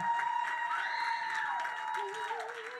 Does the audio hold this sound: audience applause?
yes